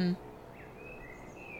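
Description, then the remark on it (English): Faint birds chirping outdoors, thin high whistling calls drifting in and out over a steady low background ambience. “I really enjoy the sound of the birds.”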